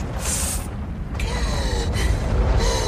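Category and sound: household object, door opening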